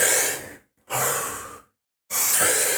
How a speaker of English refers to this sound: You're breathing deeply through your mouth and like you're absorbing a lot of oxygen, like this.